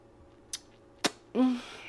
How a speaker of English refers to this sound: Here's to you. May you always be like your hot chocolate and be filled with richness. Clinky, clink. Wait, let me clink against this cup here.